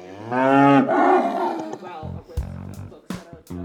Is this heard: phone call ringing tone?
no